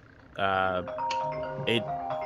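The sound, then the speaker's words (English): A phone's ringtone plays, a bright electronic melody of sustained tones followed by a few shorter chiming notes, fairly loud and lasting about two seconds. “Phone ring.”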